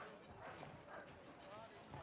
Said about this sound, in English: Well, the donkey's tied up to the cart right now, and he's pulling us, so he's busy.